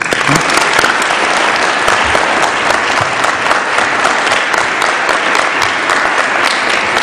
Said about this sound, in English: So I give them a great round of applause and thank you.